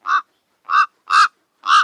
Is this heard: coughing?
no